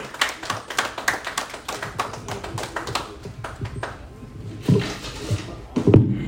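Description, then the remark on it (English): A small crowd claps in a quick, uneven patter that thins out midway, followed by a few louder bursts of clapping near the end, with faint voices mixed in. “Let's give a big clap as a question.”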